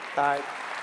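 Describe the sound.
Steady audience applause in a church fills the short stretch as a dense wash of clapping, with a brief voiced, tonal cry rising over it near the start before the clapping carries on evenly.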